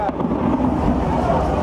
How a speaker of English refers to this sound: Video showed people running onto the streets carrying blankets and mattresses as gunfire and explosions rang out.